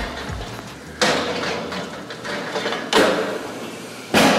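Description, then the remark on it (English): An oven door opens and a sizzling dish of chicken parmesan made with chicken thighs is pulled out, marked by three sharp, noisy clatters over a steady hiss, with no one talking. “All right, out the oven.”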